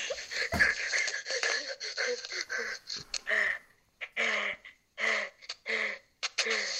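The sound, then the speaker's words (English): Heavy, raspy, creepy breathing, a series of loud huffing breaths with short pauses between them, growing choppier toward the end. “You're breathing he really said, creepy.”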